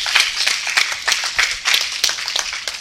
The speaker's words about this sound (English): Give God a hand and clap of praise up in here, up in here, up in here.